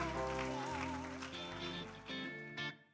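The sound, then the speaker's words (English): An audience at ICANN Community Church claps and cheers, giving Jesus a hand clap after a prayer in a live sermon, in a dense, steady wash of applause, with sustained organ-like music playing underneath, fading out near the end. “Let's give Jesus a great big hand clap.”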